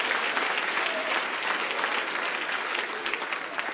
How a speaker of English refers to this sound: Clap your hands unto the Lord as you're seated.